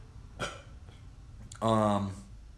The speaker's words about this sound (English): I'm going to burp.